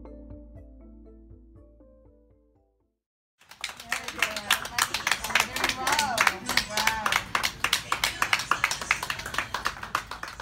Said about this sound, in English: That round of applause you hear is a group of healthcare workers at Somerset Hospital in New Jersey. They're lining the halls, clapping and playing joyful music